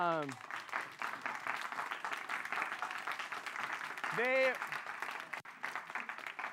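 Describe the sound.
An audience gives a steady round of applause for the unpaid people who serve them there, dense clapping that holds at an even loudness for several seconds, with a couple of brief voiced whoops rising above it.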